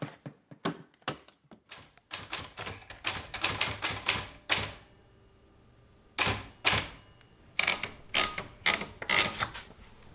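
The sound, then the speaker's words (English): Manual typewriter keys clack in quick, uneven, crisp bursts, with a brief pause midway before the typing picks up again; the typewriter sits on a little table in a kitchen. “The typewriter sits on a little table”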